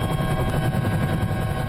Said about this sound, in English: A waiting helicopter sling loads the cargo away and gets a warning about the contents.